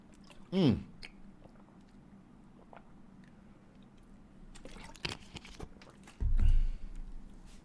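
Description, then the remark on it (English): Sounds of water being poured and drunk: a short gurgling glug, quiet pauses, then a few clicks and a louder swallowing gulp near the end. No one speaks. “Let's take some water because I'm dehydrating here.”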